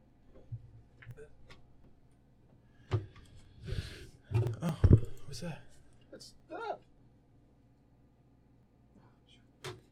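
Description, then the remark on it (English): A Bluetooth-connected computer mouse and keyboard clicking: sparse sharp clicks at first, then a busier cluster of rapid taps and clatter midway, tapering to a few isolated clicks over a low background hum. “These are connected through Bluetooth, the mouse and the keyboard, so I can't separate that.”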